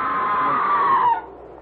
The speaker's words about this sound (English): Oh, the scream! There it is again! That was a scream, Sir Leonard. Not the wind playing tricks. It was a scream, wasn't it?